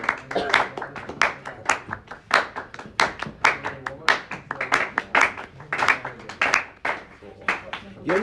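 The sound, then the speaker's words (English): Gentle audience clapping, a steady patter of many soft, irregular claps lasting several seconds, with faint murmuring voices underneath. “That clap's like gentle.”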